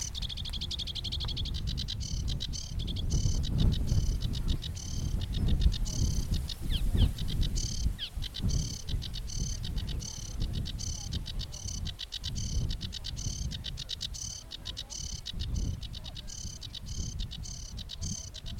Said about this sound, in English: But the sedge warbler is usually here if he's calling. We can just see him. Oh yeah, there he is.